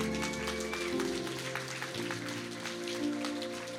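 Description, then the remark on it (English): An audience claps for the Lord steadily and densely for several seconds, the rapid hand claps blending into continuous applause over sustained keyboard or organ chords that shift pitch twice. “Okay, give the Lord a good hand clap.”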